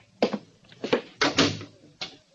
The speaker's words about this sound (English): Close the door.